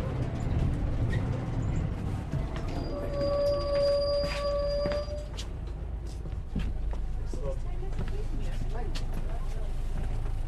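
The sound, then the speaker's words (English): Inside a city bus in Galway pulling to a stop at Spanish Arch, Key Street: a steady low engine rumble fills the cabin, with a brief whining tone from the brakes midway and faint murmuring voices underneath. “Should we get off the bus here, shall we?”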